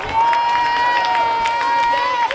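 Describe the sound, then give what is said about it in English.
A crowd claps and cheers steadily for a couple of seconds in a round of applause for Gan and Chaverim, with scattered sharp clap bursts over a constant roar and a long, high sustained cheer or whistle running through it. “One more round of applause for Gan and Chaverim.”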